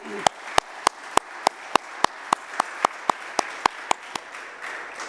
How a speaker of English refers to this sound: And I'm here to witness that. Go ahead and clap for him.